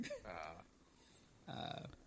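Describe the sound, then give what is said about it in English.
Two short, throaty burps, each lasting under half a second and separated by about a second of near-silence, the second slightly louder than the first. “You know, just like, the face on that burp.”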